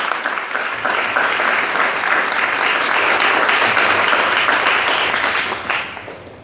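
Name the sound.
audience applause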